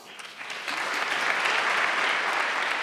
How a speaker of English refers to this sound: Okay, so that's the minority clapping. Yeah, and got maybe it. A few Democrats.